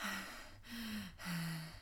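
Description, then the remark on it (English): A voice imitates creepy, heavy breathing: three loud, raspy, slightly voiced breaths in a steady rhythm, with no talking. “like creepy breathing.”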